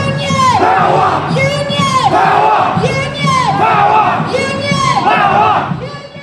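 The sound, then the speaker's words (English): A large crowd at a union rally in Melbourne, Australia chants in unison, loudly shouting the two-part slogan "Union! Power!" over and over at a steady, rhythmic pace, about four times, with voices blending into a dense roar. “Let's hear from some comrades who attended the Melbourne rally.”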